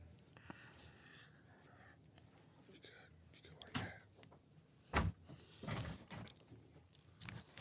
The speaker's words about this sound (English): So let me close this door.